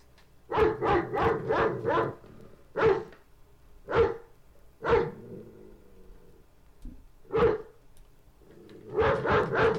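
A dog barks repeatedly: a quick burst of five barks, then single spaced barks with pauses between, ending in another rapid flurry. No one speaks.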